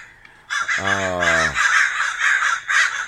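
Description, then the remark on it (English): Two crows caw loudly and harshly in the morning in a steady, overlapping run of rasping calls, filling nearly the whole clip after a brief quiet start. “They're just a couple of good crows. Couple of good crows hanging out.”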